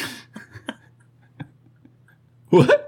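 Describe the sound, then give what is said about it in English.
Several short, sharp hiccups from a person pop out at irregular intervals over quiet background hum, followed by a brief louder vocal burst at the end. “I got the hiccups right now.”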